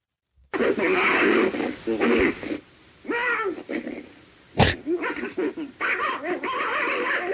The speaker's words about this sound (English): That sounds like a dog fight. I was about to say it sounds like a dog.